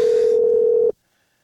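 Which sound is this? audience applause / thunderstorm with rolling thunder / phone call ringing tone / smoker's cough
phone call ringing tone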